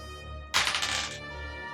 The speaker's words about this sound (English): Will you guys roll me percentage dice?